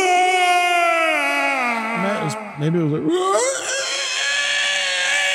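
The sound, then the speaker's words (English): A voice imitates a loud, guttural, strained scream, a sustained high wail that wavers in pitch, breaks briefly for a few spoken words, then resumes at full strength until the end. “She then let out this loud, guttural scream.”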